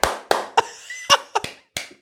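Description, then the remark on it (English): About six sharp hand claps in an uneven, halting rhythm, each a crisp slap with a short ringing tail, with no voices over them. “Fucking bro, I can't clap, mate.”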